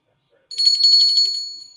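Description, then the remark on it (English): A small touristy souvenir replica of the 1776 Liberty Bell rings with a bright, high-pitched jangle, its clapper striking rapidly for about a second before the tone fades out. Fairly loud, with no talking. “But this is, you know, one of those replica touristy, you know, the 1776 bell, the Liberty Bell, right?”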